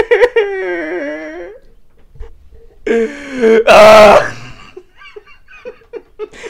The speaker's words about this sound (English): You just let out the biggest wail. Don't. You sound like a whale.